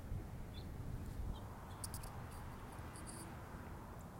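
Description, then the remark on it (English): Faint, high bird chirps come in short clusters outdoors over a steady low rumble of background noise, with a few brief tweets scattered between the busier bursts. “I just been chatting, but these birds are wowing. Where are they?”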